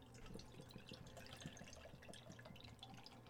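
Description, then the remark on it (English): Thomas Hooker beer pours steadily into a glass with a continuous splashing and gurgling that lasts the whole few seconds, building a foam head. Nobody speaks. “Let us get the pour. Just enjoy that pour.”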